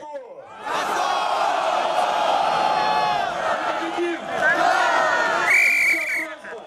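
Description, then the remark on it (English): A large protest rally crowd roars and chants continuously, a dense wash of many voices, with sharp high whistles cutting through near the end, at Bolotnaya Square on a little island in the Moscow River, Moscow. “Over the coming weeks, the rallies grew from 5,000 to 50,000 to 100,000.”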